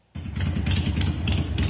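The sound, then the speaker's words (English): A motorcycle engine idles loudly, starting abruptly after a brief silence, with a steady, rumbling, pulsing chug throughout. “This was the motorcycle that brought Naomi Wolf and Johnny Myers together”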